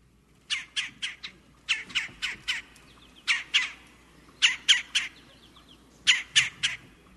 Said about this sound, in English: A red-bellied woodpecker. The red-bellied? Red-bellied woodpecker, one of our common cavity nesting birds.